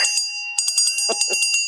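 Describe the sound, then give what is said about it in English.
A brand new bell, rung for a first-time caller, rings repeatedly in quick, uneven strikes, each with a sharp metallic attack and a shimmering, sustained ring, loud with no voices. “That is, by the way, a brand new bell. Did you hear it loud and clear?”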